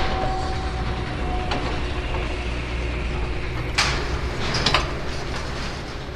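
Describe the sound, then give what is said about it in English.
Heavy sliding environmental protection doors rumble shut over a steady low mechanical drone, with two sharp metallic clanks a second apart near the end; no one speaks. “Environmental protection doors now closed.”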